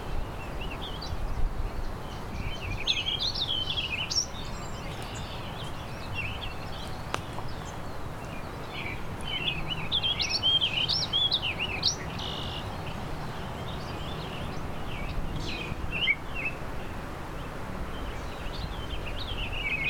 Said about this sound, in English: There's the warbling vireo again.